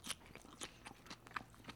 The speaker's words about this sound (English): Wow, everybody, as I said, I'm now done with that salad. I hope it was only a few bites and chews for you guys.